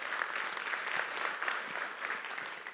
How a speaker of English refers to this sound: If you guys can come on the stage and give them a round of applause.